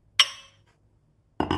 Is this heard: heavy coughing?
no